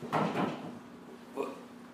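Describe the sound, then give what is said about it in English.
A door is opened with a couple of wooden knocks and creaks in quick succession, then a softer clunk a second later against a quiet room hum. “Go in this door.”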